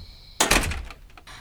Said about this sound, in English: You insert the key card, open up the door. You walk into the room.